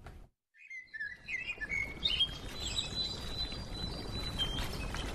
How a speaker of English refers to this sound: The sun is setting and the birds sing as I arrive at the Limbe Botanic Garden in southwestern Cameroon.